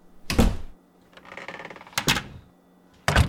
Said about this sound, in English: That's especially important when it comes to doors. It has a finality to it, and when it's shut and we tap it, it's still fairly hollow.